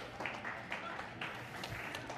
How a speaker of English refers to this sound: Obviously, your colleagues don't like you very much because that was the most tepid round of applause that I've heard in a while.